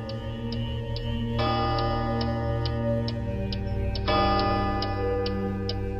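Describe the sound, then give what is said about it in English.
A clock ticks steadily while two resonant chime strikes ring out a few seconds apart, each one sustaining and slowly decaying over the ticking. “Did the clock just strike six times?”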